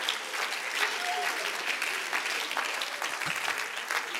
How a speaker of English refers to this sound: Again, clap in excitement. Just clap in excitement over what you feel.